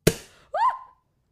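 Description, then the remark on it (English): A Prosecco bottle is opened by twisting the bottle rather than the cork: a single sharp cork pop bursts out with a brief fizzing tail. Half a second later comes a short, high-pitched vocal squeal that rises and then falls away. “You twist the bottle, not the cork.”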